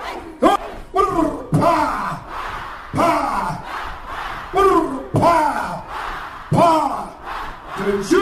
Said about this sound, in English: Arriving to rapturous applause, EFF leader Julius Malema urged the youth to rise above the challenges and focus on attaining their goals.